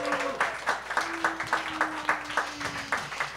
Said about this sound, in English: And from the team arguing for the motion, please welcome Colin Harmon. Big round of applause for Colin.